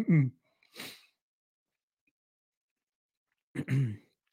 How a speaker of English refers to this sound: I'm just trying to hold back these yawns. I don't know why they keep coming so much.